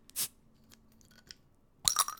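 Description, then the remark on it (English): Beer glasses of Oberon beer clink together during a toast, first a sharp tap and then, after a short pause, a brighter ringing clink that lingers briefly. Both are fairly loud, with no talking. “So I'm enjoying one of the last beers of the Oberon variety for the series, for the season. There we go. All right, cheers.”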